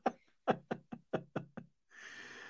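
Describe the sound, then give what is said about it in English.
Seven sharp knocks on a door by housekeeping, in a quick, slightly uneven rhythm, fairly loud, followed by a steady hiss of noise in the background. “Yeah, housekeeping came, so I had to very quickly run to the door.”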